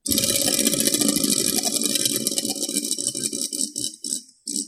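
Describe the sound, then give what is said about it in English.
A person spins a prize wheel, making a dense, rapid ratcheting clatter that gradually slows into separate clicks and short stutters before settling. It is fairly loud, with no talking. “Would you mind spinning that wheel next to you?”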